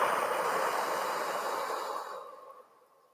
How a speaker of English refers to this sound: Just help us tune into our full body alignment, purpose, meaning, breath, breath, breath, inhaling, Exhaling through the mouth. Breathing in and breathing out.